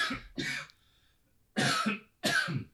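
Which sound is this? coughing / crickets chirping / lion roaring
coughing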